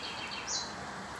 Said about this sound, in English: There's that bird. It's a tiny thing. It's maybe twice the size of one of the larger hummingbirds around here. But it is a happy bird, it seems. He's always singing. He has a nest just in the eaves of the house.